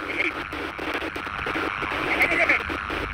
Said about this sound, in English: At first, he's just a burst of static on one of the flat screens built into the desktop.